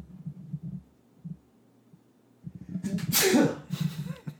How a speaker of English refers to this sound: Sorry. Had to sneeze.